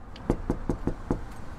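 Five quick, evenly spaced knocks on a front door in the evening, solid, rapping out a steady rhythm over a faint low background rumble, with no voices.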